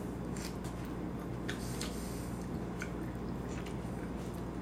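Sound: chewing food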